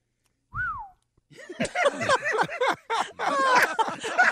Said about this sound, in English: You want that one again? I like that whistle. I like the whistle.